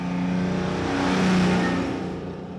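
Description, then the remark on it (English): A car engine drives steadily through the streets and builds as it accelerates, a loud continuous hum with a rising swell in the middle before easing slightly, with no one talking. “Carl drives through the streets.”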